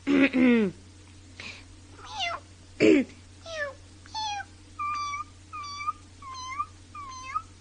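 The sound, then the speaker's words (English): A voice actor imitates a tiny kitten's meow, voicing a teeny baby cat from Curious George, repeating it about ten times, starting with a couple of fuller mews, then shifting to high, thin squeaky mews, clear with no talking. “and then in Curious George, I'm Neoki, this cute little cat who just meows a lot. And I also play this teeny baby cat.”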